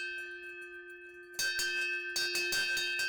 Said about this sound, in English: And there is also a bucket here, and there is a bell on it as well. So that would have been rung as it was being towed to a fireplace.